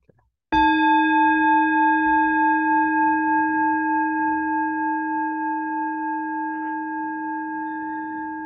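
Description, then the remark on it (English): A small bell is struck once to start a meditation and rings on with a clear, steady, layered tone, humming with a slight wavering pulse as it slowly fades over several seconds. No one speaks. “Let me ring a little bell here and get started.”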